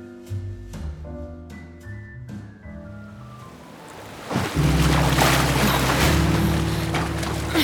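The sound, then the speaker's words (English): A rowboat out on ocean water: soft melodic music gives way to a loud, steady rush of surf and waves that swells in midway and continues under sustained tones, with no talking. “It's still so far. Is it? Look. A rowboat?”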